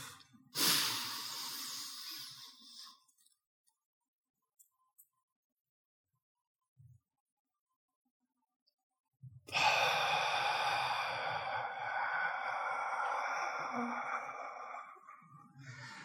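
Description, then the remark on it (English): A breathing exercise: a breathy inhale through the nose for four counts lasts a couple of seconds, followed by several seconds of near silence as the breath is held, then a long, slow, steady exhale of eight counts that continues to the end. “The way you start is exhale fully through your mouth, inhale through your nose, 4 counts, hold, and then 8 counts out.”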